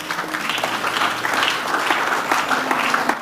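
An audience claps steadily for about three seconds, a dense, even patter of many hands at moderate loudness, with a faint low hum underneath and no voices.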